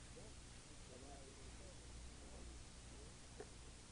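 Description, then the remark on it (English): A steady, low electrical hum from a sound system sits under a wash of faint hiss, constant throughout, with muffled voices murmuring quietly in the background. “So self-knowledge, there's a slight hum.”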